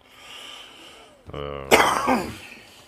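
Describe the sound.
A loud cough blasts right into the microphone, preceded by a brief voiced throat sound, over a faint background hum.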